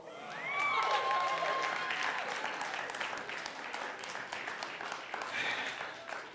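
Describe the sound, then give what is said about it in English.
An audience applauds together after a pregnancy announcement, a sustained wash of clapping that stays steady for several seconds, with a few brief whoops rising above the crowd. “I didn't see all of you applauding.”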